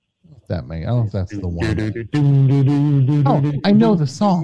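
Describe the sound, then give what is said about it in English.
A male caller hums a song melody alone, holding steady sustained notes and sliding between pitches, with no instruments behind it. “I was going to ask if he could hum a little bit more for me.”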